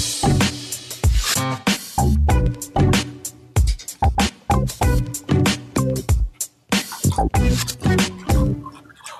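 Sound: water pouring and trickling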